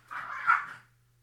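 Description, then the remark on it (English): A short burst of dogs growling, lasting under a second, swelling briefly before fading out, with no voices and only a faint steady hum underneath. “Now I can just leave the dogs growling in the show.”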